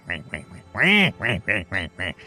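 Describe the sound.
A rapid run of about seven loud, nasal duck quacks, with one drawn-out quack in the middle and short gaps between the rest.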